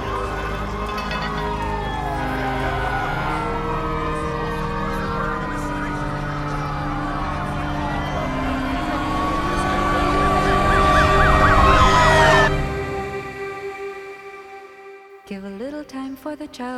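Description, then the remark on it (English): Several emergency sirens wail and sweep over one another, growing steadily louder as they approach, then cut off abruptly, leaving a few scattered faint sounds. “I still watch, even when I hear the sirens coming.”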